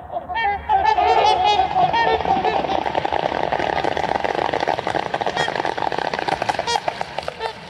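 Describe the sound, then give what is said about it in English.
A flock of trumpeter swans takes off from water into the winter sunset, loud overlapping honking calls over a steady splashing, rushing wash that runs throughout. “And they're off, taking flight into the winter sunset.”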